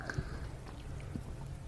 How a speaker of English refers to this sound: And I have in front of me right now some Old Camp peach pecan whiskey, and I'm going to take a sip of that right now to get this thing going.